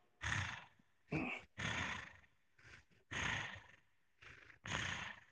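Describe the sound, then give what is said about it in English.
A voice imitates the heavy, raspy breathing of a man whose avatar stood behind a woman: six loud, harsh breaths in a steady rhythm, some with a growling, voiced edge, separated by short silent pauses. “That was him breathing.”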